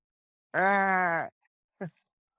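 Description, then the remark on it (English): During the Rush Hour quiz, a person imitates a hawk call with one drawn-out, buzzy, groan-like cry that sags slightly in pitch, more bleat than screech, then a brief, quieter yelp after a short pause. “And you're going to do a hawk noise, please.”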